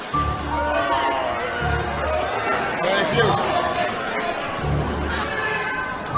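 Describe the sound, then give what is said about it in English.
A noisy audience chatters and murmurs loudly all around, a dense overlapping babble with scattered shouts and laughter, while one voice briefly speaks over the din. “Everybody settle down. This is a feisty crowd.”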